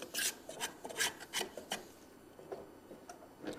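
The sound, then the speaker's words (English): A finer tool scrapes and files across a wooden model boat in quick, even back-and-forth strokes, about three per second, bright and raspy, blending the shaped wood in. The strokes grow lighter partway through. No one speaks. “Now I can come back with this finer tool and just kind of blend everything in so it looks like something, you know.”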